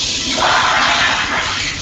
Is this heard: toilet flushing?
yes